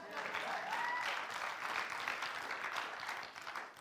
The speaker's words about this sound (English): Come on, and that's you. That's you. You get a clap to that.